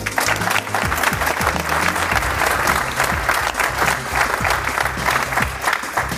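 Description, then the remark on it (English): Sustained audience applause for a panel, a dense crackle of many hands clapping at steady loudness for several seconds, with a few faint voices mixed in beneath the clapping. “I hope you'll give the audience, not the audience, give yourselves, but that our panel, our wonderful panel, a round of applause.”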